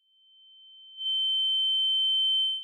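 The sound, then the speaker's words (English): A steady high-pitched ringing tone, like ringing ears, fades in softly, then jumps louder with faint higher overtones, holds for over a second, and cuts off. No voices. “It's like the ears ringing thing.”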